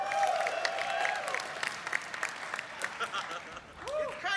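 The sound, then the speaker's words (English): An audience applauds with dense, steady clapping for about four seconds, and a few voices and cheers rise over it before the clapping begins to thin out near the end. “Round of applause.”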